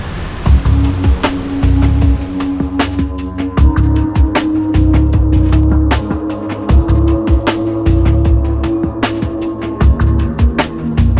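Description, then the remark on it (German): A ship's engine drones steadily while the hull slams repeatedly into rough waves, riding up and down on the open sea on the way to Helgoland, with irregular bursts of splashing and thudding impacts and no voices. “Hier, wo wir gerade hinauf und hinunter durch die Wellen peitschen, waren früher blühende Landschaften.”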